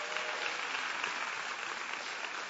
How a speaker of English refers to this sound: Thank you back there in the back. Give our video department a big hand clap.